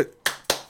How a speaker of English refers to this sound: Round of applause. Standing ovation.